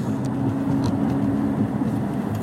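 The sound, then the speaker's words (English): A steady, droning car engine and road rumble, heavy in the low end, from inside a car sitting in traffic on a highway, with faint hiss above and no voices. “So I'm just sitting here on the freaking highway.”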